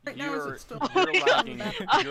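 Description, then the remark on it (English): A voice coming through a laggy online call, the speech choppy and broken up with abrupt dropouts and stuttering fragments, moderately loud. “you're lagging very badly.”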